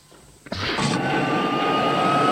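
After a brief quiet moment, a loud roar of an airplane plunging downward after its engines have stopped bursts in, a rushing whoosh with a steady high whine that keeps building to the end.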